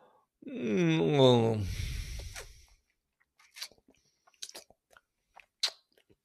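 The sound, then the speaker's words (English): A dog chews with scattered wet, crunchy clicks and smacks at irregular intervals, fairly quiet, after a drawn-out, wavering vocal groan at the start. “Yeah, I can't tell if they're eating the carpet or do what the fuck they're doing.”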